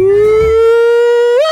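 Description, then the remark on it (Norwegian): A voice imitates an ambulance siren with one loud, sustained wailing note, steady in pitch for over a second before sweeping upward at the end. “At du lager en ambulanselyd?”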